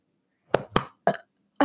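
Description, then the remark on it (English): A few short, abrupt throaty bursts, like a burp breaking up into quick gulping pops, with brief silences between them and no talking. “I got a burp.”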